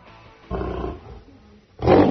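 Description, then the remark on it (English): A lion in Haiti, taunted by a man sticking his fingers through a chain-link fence, roars twice in quick succession, deep and throaty, the second roar louder than the first, with no talking over it. “You could hear the lion get ticked off.”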